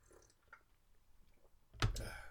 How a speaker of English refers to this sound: There we go. Another sip.